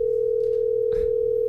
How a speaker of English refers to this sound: Let's give her a call. Can we call her? Hold on. Ooh. Is it ringing? Yeah. Your mama better pick up.